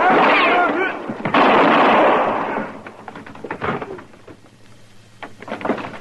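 Two loud, booming gunshots in a radio drama, about a second apart, each with a long rumbling tail, followed by softer scattered clicks and thuds as things settle down.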